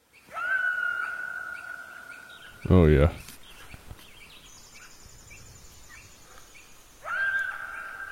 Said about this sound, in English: An individual coyote yipping.